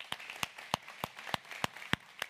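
An audience claps in steady unison to welcome first-time guests, sharp crisp beats landing about three times a second over a softer bed of scattered clapping, with no one speaking.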